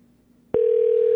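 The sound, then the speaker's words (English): After a quiet hum, a telephone ringback tone on an outgoing call starts abruptly and holds as one steady, fairly loud electronic pitch through the end, with no talking over it. “Is this the number? Yes, it's ringing.”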